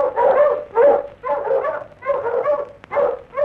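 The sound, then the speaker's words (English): Dogs bark loudly at midnight in dense mountain country northeast of Melbourne, in a steady string of about five or six sharp, strained bursts, each following quickly on the last with no other sounds or voices. “At midnight in dense mountain country to the northeast of Melbourne, the dogs were barking.”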